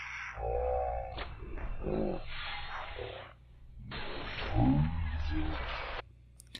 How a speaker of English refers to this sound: It's got a wolf sound to it. Here, I'll show you.